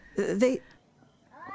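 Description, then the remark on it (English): Two cats yowl: one loud, strained wail lasting about half a second, then quiet, then a second rising yowl starting up near the end. “I tell you, there's two of them. Lona, listen to them. They're not ordinary cats.”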